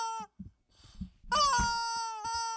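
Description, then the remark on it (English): A person imitates a chicken squawk into a microphone: a short shrill cry, a brief pause with low rustling, then a long, loud, strained squawk that holds a high pitch, dips slightly, and keeps going to the end. “in honor of all the chickens we just chased, Squawk … into the mic. We're talking a long one.”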